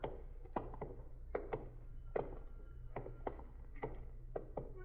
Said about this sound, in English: What's that? What's what? That knocking. I don't hear any knocking, Sergeant. Stop now. There it is. Sounds like somebody hitting a window.